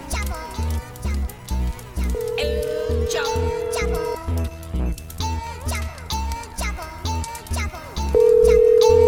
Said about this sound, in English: All right. See if we can get Chapo on the phone.